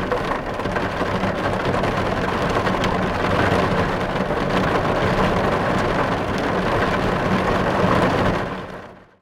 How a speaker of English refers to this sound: If you wasn't aware, that was heavy rain hitting the windscreen of a car.